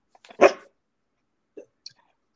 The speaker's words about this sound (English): He's there. There you go. Good boy. We'll take two barks. We'll take it.